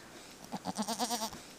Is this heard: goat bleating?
yes